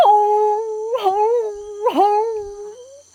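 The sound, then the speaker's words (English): A howler monkey gives one long, loud, wavering howl, a sustained tone that dips and swells twice before tailing off, among vines and plants, with no talking over it. “Look, it's a howler monkey.”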